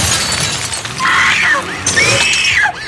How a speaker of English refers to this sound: The passenger side window explodes at the contact of Jason's machete.